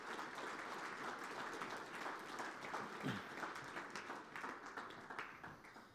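A crowd applauds steadily, a dense wash of many hands clapping at once, sustained and fairly loud for several seconds with no one speaking.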